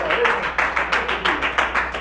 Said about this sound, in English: Let's clap our hands and give God praise one time, one more time, for being a faithful God.